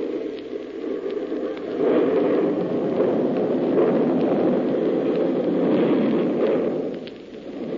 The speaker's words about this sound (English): I fused one of their bombs before I left the island. Everything on the island wiped out.